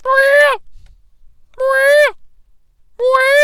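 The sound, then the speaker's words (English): A voice imitates a shrieking bird three times, each loud, harsh, drawn-out screech lasting about half a second and separated by brief silences in an even rhythm. “But my God, the shrieking and the sounds that the birds make, sometimes I can't get through the whole thing because it's just...”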